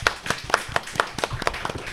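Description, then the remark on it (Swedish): Brief audience applause for the Geekpodden team after a quiz round: sharp claps landing in a fairly steady rhythm, about four per second, moderately loud, with no voices over it. “Nu får jag applåd till dem där borta.”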